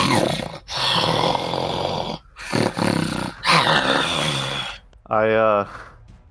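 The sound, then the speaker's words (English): A person imitates the angry cat noises of a chimera, making several loud, raspy growls and snarls in long bursts with brief pauses, ending on a shorter, tonal yowl. “also it makes dragon noises and bleats like a goat too, but I'm only doing cat noises.”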